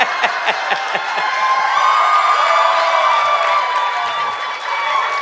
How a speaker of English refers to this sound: And the crowd yelled at him, and then he went back and got the right beer.